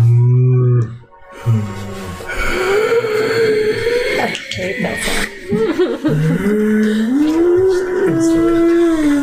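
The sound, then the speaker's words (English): A large animal gives a series of loud, deep lowing calls, drawn-out moans that slide up and down in pitch, broken by a brief pause near the start. “And you hear a low.”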